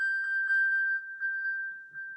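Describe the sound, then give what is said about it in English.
A mobile phone dings insistently: a steady, high electronic tone holds throughout while brighter chime-like blips repeat at uneven intervals, fairly quiet, with no one speaking. “This thing was just going ding, ding, ding, ding, ding, ding.”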